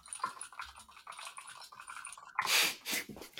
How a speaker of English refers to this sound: I think someone's writing their resignation letter right now. From that clicking I heard. No, I'm looking up some important information that I am not allowed to tell you what it is.